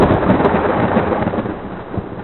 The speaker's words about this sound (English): Can you make like electrical bolt sound?